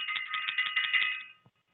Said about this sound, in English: Let me ring the bell.